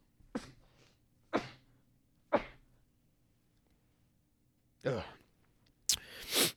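A run of sharp sneezes: three quick bursts about a second apart, then a pause before two more, the last one longer and noisier, with a quiet hum underneath.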